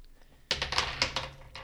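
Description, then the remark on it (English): Dice tumble and clatter across a hard tabletop, rolled for a perception check in a tabletop roleplaying game: a quick burst of sharp clicks and taps that bounce several times before settling, fairly crisp, with no talking. “The dice didn't bounce enough.”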